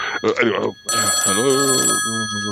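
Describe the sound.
A telephone rings steadily and fairly loudly for most of the moment as a call is placed to an aunt, with voices talking over the ringing throughout.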